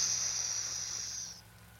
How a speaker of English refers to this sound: And he backs up to the altar behind him, spilling the contents of the goblet, and the whooshing noise it makes initially should have ended, but it keeps on.